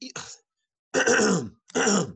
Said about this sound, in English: I'm going to clear my throat for this one, man.